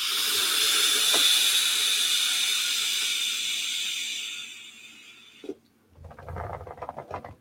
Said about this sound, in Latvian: tāpēc es personīgi tvaicēju pat aizno plaušās, jā, tāpēc man patiek lielie mākoņi.